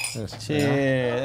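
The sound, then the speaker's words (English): A quick cluster of bright clinks, like glasses touching in a toast as drinks are raised, rings out, followed by a voice talking over the moment. “Sorry, I'm going to start drinking. I don't want to be rude. Right. Cheers.”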